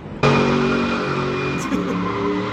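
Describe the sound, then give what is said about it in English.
A car engine suddenly roars to life and revs hard and steadily as the car does donuts at a street intersection at night, with a high-pitched tire squeal running through the loud, continuous noise. No one speaks. “Sounds of screeching tires waking neighbors out of their sleep.”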